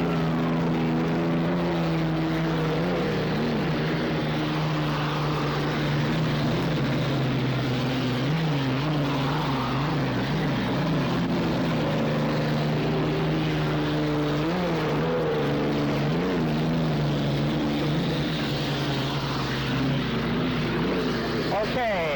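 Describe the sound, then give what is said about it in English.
Racing boats, including Budweiser and Eagle Electric, roar past on the turn by the Belle Isle Bridge with a loud, continuous engine drone whose low, buzzing pitch wavers and bends as the boats sweep by, never dropping off across the whole stretch. “Budweiser coming up, trying to take Eagle on the turn down by the Belle Isle Bridge.”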